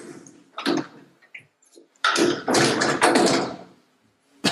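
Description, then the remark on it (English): A door is pushed shut: a soft bump, small clicks, then a couple of seconds of loud scraping swish as it swings and settles, followed by quiet. “Shut the door so I don't.”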